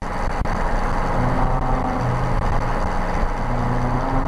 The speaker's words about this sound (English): it's just picking up part of that tail rotor sound, and because of the way the doors are adjusted, it's making a weird sound